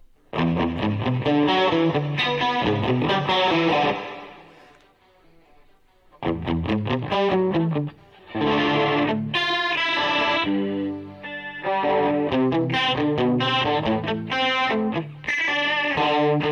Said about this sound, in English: Try tuning a guitar with a chorus pedal on. So you guys all know that.